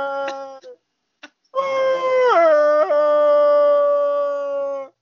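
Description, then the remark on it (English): A person imitates a wolf howling, starting with a few short rising yelps, then breaking into one long, loud, sustained howl that dips in pitch and holds steady before cutting off. “Probably howling at the moon.”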